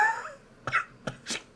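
A few short, breathy coughs in quick succession, fairly soft, with a faint vocal sound just before them, like someone demonstrating a small cough.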